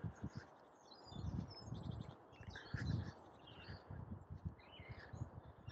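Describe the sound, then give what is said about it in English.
Small birds chirp and tweet in scattered short bursts outdoors over a steady low rumble of background noise. “Just listen to the traffic or the fridge or the birds.”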